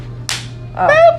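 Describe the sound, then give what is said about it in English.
A single hand clap, a sharp bright smack with a short fading tail, followed a moment later by a brief voiced exclamation from a person. “I didn't even do a good clap.”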